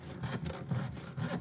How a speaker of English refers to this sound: So, the best way to check about the freedom of a saw is to use it, right? So, we start sawing this board that I